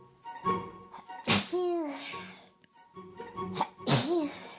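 A woman sneezes twice, loud, each sneeze a sharp burst trailing into a voiced, wavering tail, with a short pause and some breathy sounds between them.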